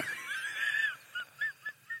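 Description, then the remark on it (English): Chickens clucking: one drawn-out, warbling call followed by four short, evenly spaced clucks, with no voices present. “Oh my God, we need to release a chicken album.”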